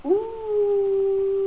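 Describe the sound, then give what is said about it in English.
A voice imitates an animal howl: one long, steady howling tone that swoops up at the start and holds level, fairly loud, with no other sounds around it. “The animals began to howl.”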